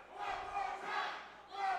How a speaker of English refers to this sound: Crowd was calling for a chop, just like we were talking about, and he gave it to them.